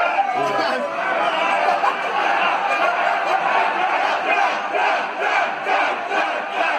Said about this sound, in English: there was actually a link to a tweet of someone who was at the event who filmed a bit of footage, but we're going to cut in a bit of the audio from that now so we can hear exactly what the WWE fans were shouting.